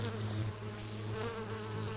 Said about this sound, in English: When you hear a bee buzzing along, visiting a flower, you're hearing the movement of air made by the fluttering of its wings. But it turns out that bees are buzzing in more than one way.